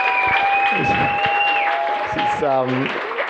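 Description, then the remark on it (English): An audience applauds steadily for the people running the Laboristoy night, a dense wash of clapping with a couple of long, high whistles riding over it and a brief cheering voice near the end. “How about a round of applause for running this night, everyone, for Laboristoy?”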